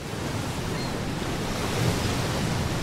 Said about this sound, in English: Gabon is surrounded by trees. Ocean,